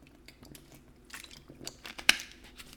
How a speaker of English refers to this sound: I'm drinking water out of a water bottle, even though I have a Hydro Flask.